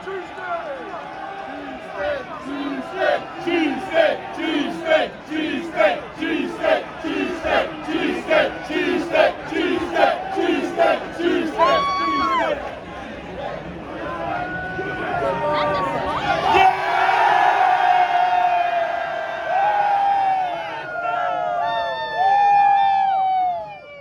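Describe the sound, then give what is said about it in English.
A crowd at Philly Fan Fest in Philadelphia chants in a loud, steady rhythm, egging on Premier League Mornings host Rebecca Lowe to eat a cheesesteak, then breaks into cheering, whoops and high excited shouts from many voices. “But this is Philadelphia, so we and the crowd egged her on, and I was right up front to film her finally eating one.”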